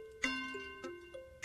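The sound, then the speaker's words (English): A quiz-show countdown clock, with 15 seconds left, ticks in steady beats, three sharp pulses about half a second apart over a sustained, stepping electronic tone, fairly quiet and with no one talking. “15 seconds on the clock.”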